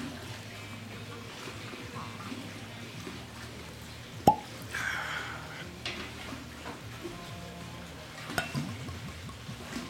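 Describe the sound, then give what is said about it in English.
A cork pulled from a bottle of 10-year-old Islay Scotch whisky gives one sharp, bright pop, followed a few seconds later by a second, smaller click, over a low, steady background rustle. “So let's go ahead and uncork it.”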